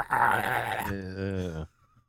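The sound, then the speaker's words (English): A person voices a creature's growling hiss: a breathy, noisy hiss that turns into a low, throaty growl, lasting under two seconds before cutting off. “It like kind of growl hisses at you and looks up.”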